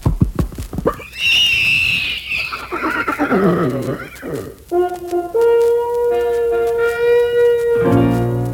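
A loud, shrill horse whinny rises and trails off, then a song intro begins with sustained, ringing instrumental notes holding a steady melody.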